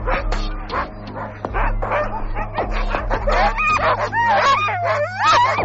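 A pack of sled dogs at a dog sled race barks and yips excitedly, overlapping high-pitched yelps and whines in a continuous, clamorous, loud chorus.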